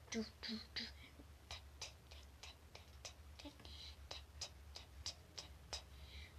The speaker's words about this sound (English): A countdown clock is ticking.